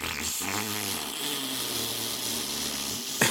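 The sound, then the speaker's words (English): A voice imitates a deflating balloon fart with the mouth over Discord: a steady, buzzy, sputtering drone lasting about three seconds, its pitch wavering up and down, fairly loud with no talking. “I tried to do a balloon fart sound with my mouth.”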